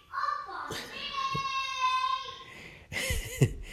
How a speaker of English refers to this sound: Sorry, my 2-year-old is yelling along to Paw Patrol in the background. I'm not sure if you could hear that.